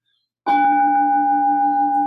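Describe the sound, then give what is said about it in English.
A small bell, rung during a talk on Buddhist teaching, is struck once clearly, then rings on with a steady, shimmering tone that barely fades. No voices are heard. “could you ring the bell? Big or small? Oh, you small, you got that one.”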